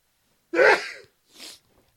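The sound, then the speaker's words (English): A single loud sneeze, uncovered and from the mouth, bursts out sharply, followed a moment later by a softer breathy exhale, then quiet. “And I didn't cover for your sneeze at all.”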